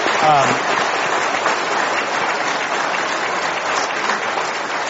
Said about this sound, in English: We get to sit up here, but really it takes a lot of people to do that. So I'd like to give them a round of applause, people who've made today possible.